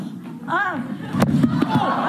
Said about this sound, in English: You can hear the sickening thud as her head hits the floor.